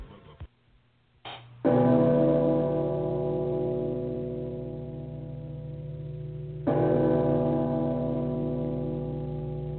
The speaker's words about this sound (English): All right, well, the bells are ringing. Doesn't mean that it's noon here on the Gridiron Stud Show, but it is 11 a.m. Eastern Time.